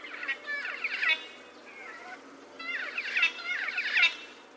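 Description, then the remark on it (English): A black-faced cuckooshrike gives two bursts of rolling, churring, metallic-sounding calls, each about a second long, with a softer trill between them and no talking. “the black-faced cuckoo shrike”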